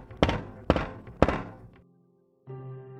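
Three heavy, forceful bangs on the front door of a house in a steady rhythm, loud, followed after a short pause by a sustained low hum.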